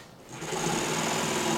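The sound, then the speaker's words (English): A power saw whirs up to speed and cuts steadily through wood, a continuous mechanical buzz with a high whine that holds for over a second with no talking. The wood is being sawn to build a homemade air car. “It seemed safest to let my dad handle all the sawing.”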